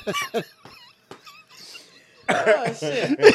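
Someone choking and coughing: a quick run of harsh coughs, a short quieter pause, then a louder, strained stretch of sputtering, gasping coughs that carries on to the end.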